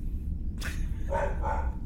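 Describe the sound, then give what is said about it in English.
A female dog barks a few times in quick succession, a sharp bark followed by higher, yelping barks, heard over a steady low hum with no one talking. “Right, well, my dog is going mental, so I need to go beam her out into space to get her shut up, by which I mean let her outdoors.”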